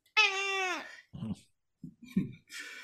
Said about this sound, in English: Yeah, even my cat is scared now.